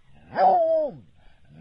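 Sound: dogs barking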